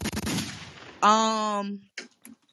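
A loud, rough burst of gunfire crackles for about a second, then a drawn-out, buzzing tonal shout rings out, followed by a few short, faint sounds.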